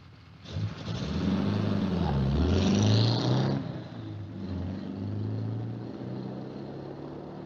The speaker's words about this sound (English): Yeah, and some car.